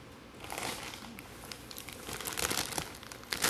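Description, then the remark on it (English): Crinkling of a snack chip bag, a continuous crackly rustle with sharper crunchy bursts as the plastic is squeezed and handled, heard on its own without talking. “This is the sound of deliciousness.”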